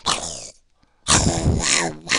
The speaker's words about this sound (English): I don't know what the hell that was, but I gotta go. Looks like there's a mad Wolverine wolf coming out here after me, and I gotta get rid of him.